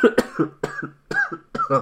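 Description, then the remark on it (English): A person with a dry throat coughs in a run of four harsh, rapid bursts, each with a rough throaty tail, fairly loud with brief gaps between them and no talking. “About to enter a coughing state.”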